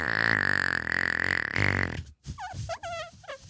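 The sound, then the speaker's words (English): A voice imitates a long, loud, buzzing fart for about two seconds, then breaks into brief squeaky laughter-like vocal sounds. “And he just lets it rip. Rips a fart.”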